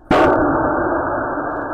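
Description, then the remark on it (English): A recorded implosion of the Titan submersible deep underwater, almost down at the Titanic: one sudden, loud, sharp boom that collapses into a heavy, muffled rumble, holding steady and dying away only slowly. No voices are heard. “Audio Of the Titan Implosion”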